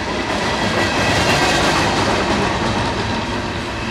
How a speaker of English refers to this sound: Thanks to the frequent rains, the valley floor is carpeted in wildflowers, and every 30 minutes or so, a long freight train rumbles by.